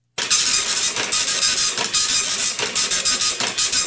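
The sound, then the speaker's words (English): A dot matrix printer prints with a loud, harsh, high-pitched buzzing that runs steadily, broken by quick regular pulses as the print head sweeps back and forth, with no voices. “That is a dot matrix printer.”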